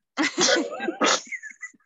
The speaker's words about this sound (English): I don't know what that is, but it sounded like you sneezed.